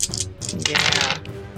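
Dice clatter across a hard tabletop in a bright burst of rapid clicks and rattles that tumble for about a second before settling, with no voices.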